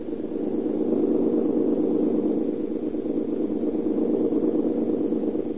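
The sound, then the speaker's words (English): A Chevrolet car engine drones as it passes, at a steady, moderate level throughout, a constant low rumbling hum with no clear rise or fall, without any voices. “That is a Chevy.”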